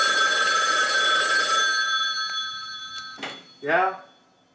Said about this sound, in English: And the phone rings.